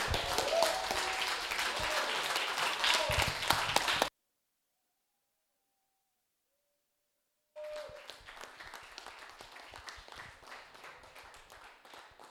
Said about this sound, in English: So if you guys will, I want to give God a hand clap of praise right now.